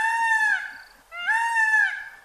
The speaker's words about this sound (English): you no doubt recognize that bird call. Peacocks. They're beautiful, but they can be bullies, roaming through your neighborhood like the sharks and the jets, occupying your roof with a shrill cry that sounds like a cat meowing into a bullhorn.